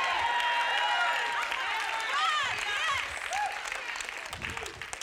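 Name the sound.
crowd cheering and applauding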